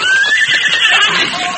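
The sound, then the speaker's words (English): Carl's horse in a Lone Ranger radio drama whinnies loudly, a shrill, wavering neigh that slides up and then trails off over about a second and a half, with no one speaking. “Carl ran around the wigwam to his horse.”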